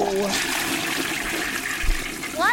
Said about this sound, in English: Why do I keep hearing a toilet flush?